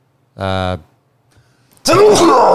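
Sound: loud sneeze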